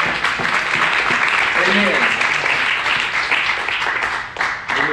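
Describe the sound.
An audience applauds steadily in thanks during a church sermon, dense overlapping hand claps forming a loud, sustained wash of sound with a few voices murmuring and calling out beneath it.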